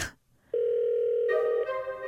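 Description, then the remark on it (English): A loud, steady electronic telephone call tone starts after a brief quiet moment and holds continuously, gaining a brighter, buzzier edge partway through, then shifting pitch slightly near the end. No voices. “It's a phone call.”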